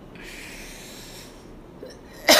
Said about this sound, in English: Excuse me. Cough it out. Clear it out, y'all. Sneeze, cough.